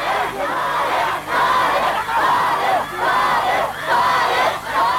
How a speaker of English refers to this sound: So I was wandering around being taken out in the street where there was all these fans screaming like it was Beatlemania.